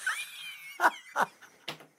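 A dog whines with a thin, high whimper, then lets out three short, sharp barks spaced about half a second apart, fairly loud, with no talking.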